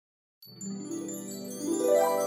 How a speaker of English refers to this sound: Wind chimes. I hear them in the distance.